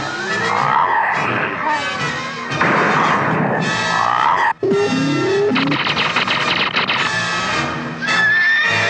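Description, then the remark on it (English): A horse whinnies amid a dense, loud burst of dramatic sound effects, with thuds and rushing noise layered over it and a brief cut partway through. “There's a horse.”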